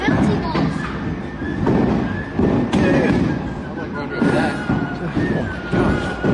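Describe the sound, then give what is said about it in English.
Baseball-sized hailstones slam onto a roof in Arkansas in loud, irregular thuds and cracks, several in quick succession over a constant rushing roar, with muffled voices faintly underneath. “And they show the video out the window of these giant hailstones the size of baseballs landing on the roof.”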